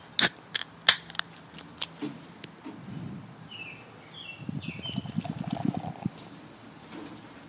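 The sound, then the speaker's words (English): Juicy Ass IPA beer, poured for audio effect, glugs and splashes into a glass, following a few sharp clicks at the start, with the pour swelling into a fizzy, gurgling rush before trailing off and leaving a lot of head. No one speaks. “Well, I was pouring for audio effect.”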